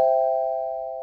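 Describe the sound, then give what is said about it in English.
A single bright electronic chime rings out for about a second, a steady sustained tone with no talking over it, a quiz bell signalling a correct answer. “Was it a bell or a buzzer?”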